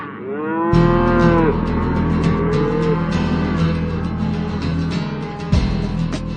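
Cows moo loudly, several long drawn-out calls overlapping over a steady low rumble of farm noise, with no one talking.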